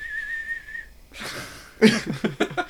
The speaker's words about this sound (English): I wish I could whistle better.